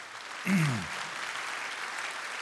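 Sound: audience applause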